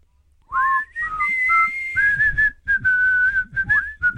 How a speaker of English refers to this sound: I reckon you'd recognize the whistling chorus.